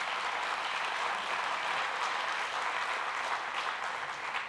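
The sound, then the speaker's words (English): Steady audience applause, a dense crackle of many hands clapping at an even loudness throughout with no voices standing out. “You know, if I close my eyes, I can pretend that applause was for me.”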